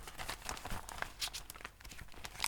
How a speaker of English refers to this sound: Oh! There! What's this? You can't go pinning bits of paper on me. It's to remind you.